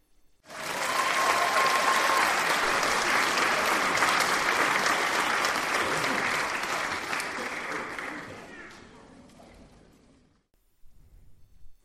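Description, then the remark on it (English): A loud, sustained round of applause from a group, introducing parkrun anniversary announcements; dense clapping holds steady for several seconds before gradually thinning out and fading away. “And that round of applause, of course, means it's time to let you all know who has an anniversary soon.”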